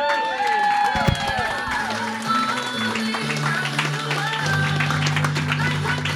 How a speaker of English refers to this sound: Keep it going for Anne Frank, everybody. Guys, big round of applause for all your roasters.